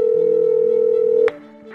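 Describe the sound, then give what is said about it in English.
A telephone ringback tone on a repeated outgoing call to a man's phone number: a steady, loud electronic tone holds for over a second, then cuts off abruptly with a click, leaving a faint line hum. “And kept calling.”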